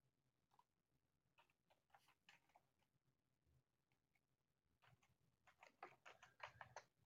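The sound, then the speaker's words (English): Rapid, irregular clicking of keys on a computer keyboard, light and scattered at first, then a louder, denser burst of typing toward the end, with no voices. “No typing.”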